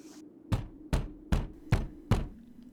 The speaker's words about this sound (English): Knock harder. I can't. Hurts my knuckles. Oh, let me.